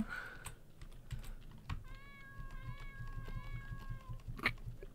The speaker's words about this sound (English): Oh, there's a cat here, a cute little cat. Oh, there's a cat in the Christmas tree. No, Aska. Aska says, stupid critter. A cat goes, meow.